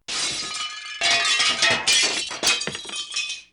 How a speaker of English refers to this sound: Auden and Tristan woke with a start, jostling the table and sending the dishes crashing to the ground.